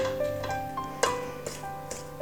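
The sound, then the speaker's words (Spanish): Boiled, drained sweet potato being mashed with a fork: a handful of light clinks and taps against a bowl at an uneven pace, over a steady low kitchen hum, with no one speaking. “Quitar todo el agua, triturando con un tenedor.”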